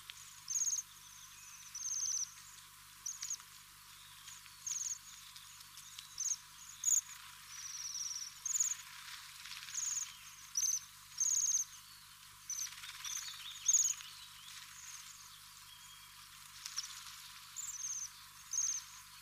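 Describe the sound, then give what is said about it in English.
Many high, thin buzzing trills from waxwings, repeated in quick bursts about once a second, overlapping like a flock calling, with no voices. “Their most famous call is a high, rapid, buzzing trill of sharp notes, which can sound like a small bell.”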